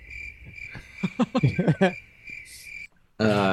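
A crickets chirping sound effect, triggered by a button: a steady, high chorus of crickets chirping continuously for a few seconds, with laughter and voices breaking in over it, before it cuts off abruptly and a loud voice starts.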